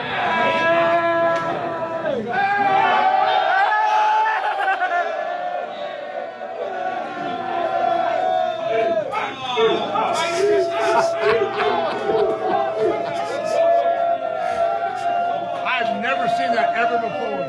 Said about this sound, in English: How about the Eagles fans starting the Eagles chant when they come out of the bathroom? How great is that?